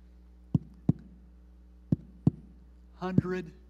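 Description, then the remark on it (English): Two double thumps of a heartbeat, each lub-dub pair clear, spaced about a second apart, before a voice briefly starts speaking at the end. “Who started our heartbeat? God does.”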